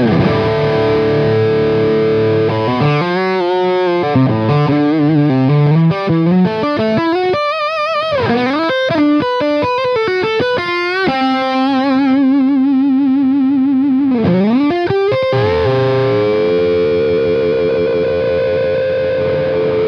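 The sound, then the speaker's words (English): A heavily distorted electric guitar plays loud, wailing lead lines with bends and sustained screaming notes, full of gritty harmonics and effects, with no voices over it. “It's like a 59, and when I get into my crazy mode, this thing just starts screaming”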